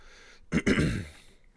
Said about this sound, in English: I apologize for the cough, for the throat clearing. It just won't go away.